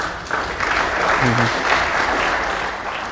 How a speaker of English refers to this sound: Feel free to applaud